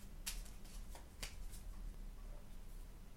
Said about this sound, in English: Well, let me get my cards out. It's now time for the affirmation of the week. So I'm just going to put the mic down for a minute and shuffle the cards, so bear with.